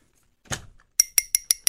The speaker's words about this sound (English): You know when people bang their glasses? No, because they want the couple to kiss?